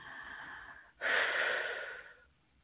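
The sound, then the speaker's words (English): One slow, deep breath: a long airy inhale, a brief pause, then a fuller, louder exhale that trails off into quiet. No one speaks. “And FYI, I do a lot of deep breathing in order to help move the energies and the processes along.”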